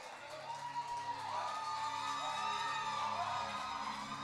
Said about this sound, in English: Now, some of you might be saying, why are they shouting?